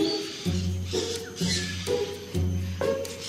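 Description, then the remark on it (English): Busy outdoor aviary ambience in the Parrot Paradise area of Jurong Bird Park, 2 Jurong Hill: bursts of low, droning bird calls repeat every second or so, with scattered chirps and squeaks above, steady throughout, with no one speaking. “Here is Jurong Bird Park, 2 Jurong Hill, postcode 628925.”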